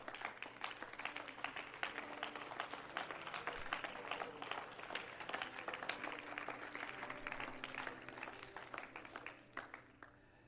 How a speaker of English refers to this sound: Somebody stand to your feet and clap your hands in appreciation.